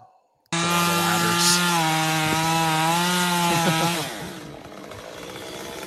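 In a rainforest, a man on a ladder starts a chainsaw that roars to life and bites steadily into wood for several seconds, its engine pitch wavering under load, then drops away as the cut ends, leaving a lower idling rumble.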